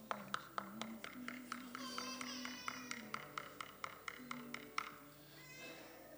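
A long run of sharp, evenly spaced knocks on a door, about three per second, rapping steadily for several seconds before stopping, with soft sustained keyboard tones humming underneath.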